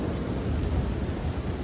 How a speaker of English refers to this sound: There's a crash, another crash, and it's probably, I would say, 1-2 in the morning before it dies down, and then the sound of rain on your windows as the storm moves off.